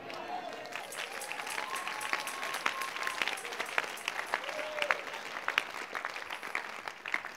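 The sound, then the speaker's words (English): An audience breaks into sustained, dense applause, many hands clapping steadily for several seconds, with a few raised voices calling out over the clapping. “Until, listen, you need to hear this one before you clap.”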